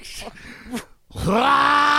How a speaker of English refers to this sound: Wait, did you just hawk a loogie? Like, you just... We heard that. That sounded like it had some substance to it.